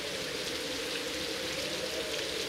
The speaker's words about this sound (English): And for this one, we're going to be sitting in a grass valley. Yeah. Light rain. You can feel it on your face, in your hands.